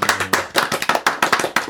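A short burst of applause from a small group: sharp, crisp hand claps in a quick, slightly uneven rhythm, fairly loud, with no voices over them.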